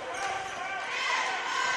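A basketball being dribbled on a gym floor, its bounces partly buried under a steady, loud wash of arena crowd noise throughout.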